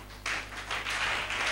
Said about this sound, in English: I salute the children. Can we clap for the children?